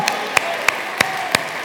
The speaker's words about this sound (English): Come on, somebody stand to your feet and give the Lord a clap offering right now. Say, paid in full, Lord Jesus.